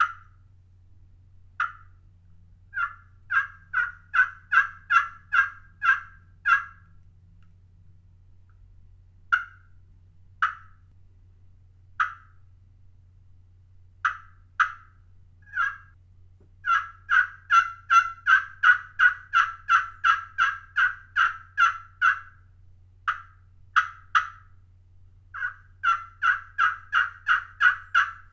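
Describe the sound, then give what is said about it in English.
A slate-over-glass turkey pot call is played in bursts of rapid, raspy yelps and clucks, with quick runs of notes, brief pauses and a steady low hum beneath, and no talking. “So this is a pretty unique looking pot that has a piece of slate over glass in it.”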